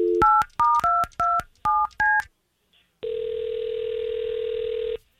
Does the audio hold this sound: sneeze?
no